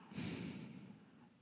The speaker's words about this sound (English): And I'm breathing hard because I just ate a sandwich.